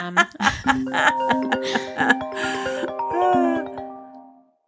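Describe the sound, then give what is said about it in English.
A smartwatch rings with a bright electronic melody of sustained, stepping tones, fairly loud, playing for several seconds before cutting off. “sorry, that was my watch ringing.”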